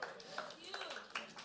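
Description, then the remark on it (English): Sparse, scattered applause from a small church audience during a service: a handful of uneven, unsynchronized claps trickling in, with faint voices murmuring underneath. “That's like that awkward clap.”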